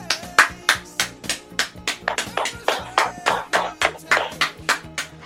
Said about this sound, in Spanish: Un aplauso.